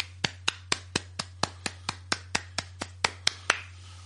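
A single pair of hands claps about fourteen times in a quick, even rhythm, crisp, over a faint steady low hum with no talking.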